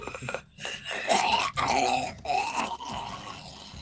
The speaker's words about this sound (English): And the screams of the damned echo in your ears.